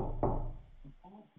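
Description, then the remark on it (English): A single dull knock on a door, followed by a faint, low murmuring voice. “Now I hear someone knocking.”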